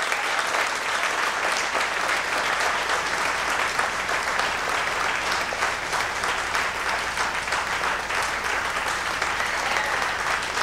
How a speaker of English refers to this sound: Oh, is that a clap?